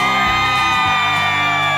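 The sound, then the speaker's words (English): A fall crowd of TV morning-show viewers whoops and cheers loudly outdoors on a Friday morning, a dense wash of high-pitched shouts and yells sustained without a break for the full couple of seconds. “On a Friday morning in a wonderful crowd.”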